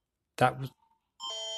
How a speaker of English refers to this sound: That's a an alert ready system. I wasn't able to record a podcast yesterday as my phone was hijacked by the Canadian government to play a alert ready notification.